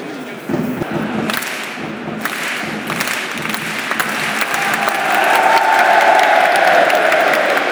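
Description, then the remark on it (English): A football crowd at a Motherwell match claps steadily in a dense, continuous wash around half time, with dull drum thumps underneath. It swells louder toward the end as a sustained chant-like tone rises from the crowd. “There we guys drumming, we were clapping, we joined in.”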